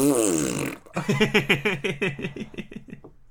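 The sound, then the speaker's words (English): A loud fart sound, apparently made with the mouth, standing for the fart set off when Tom Cruise touches a red beam in a Mission Impossible scene: a drawn-out buzzing tone that breaks into a rapid, stuttering run of about a dozen sputtering pulses before trailing off. “The red beams are the farts.”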